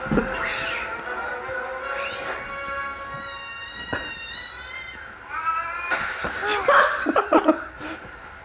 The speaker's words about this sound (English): Siamese cat for some reason.